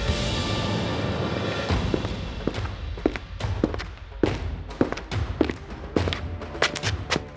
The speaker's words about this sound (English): For long minutes, they held their positions, not a muscle twitching as they listened for the burner. Soon, they could hear footsteps coming from outside.